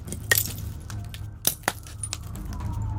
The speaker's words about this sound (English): Glass and rubble crunched underneath our feet.